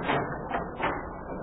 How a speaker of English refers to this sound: Open up the door there, will you, Sparky lad?